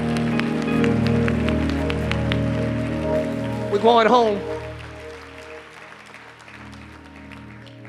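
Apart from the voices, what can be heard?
audience clapping hands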